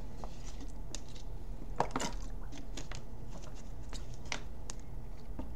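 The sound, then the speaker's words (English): Someone drinks water, with a series of soft wet gulps and mouth clicks spread irregularly over a few seconds, set against a steady low background hum. No one speaks. “Let me drink some water.”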